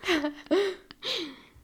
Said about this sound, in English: You said, what if my baby stops sleeping, which she's crying on cue right now.